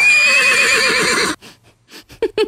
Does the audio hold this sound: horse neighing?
yes